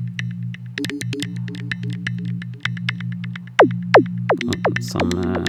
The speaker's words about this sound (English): Resonance from the filter. I like this one. Very bell, kind of metally sound. Not belly.